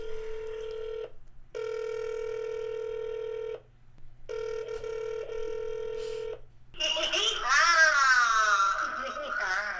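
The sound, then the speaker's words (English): An outgoing call to a hotline rings through the earpiece: three steady, buzzy ringback tones, each about two seconds long with short pauses between. A louder, wavering voice then cuts in at the end. “If someone answers, I'm going to hang up.”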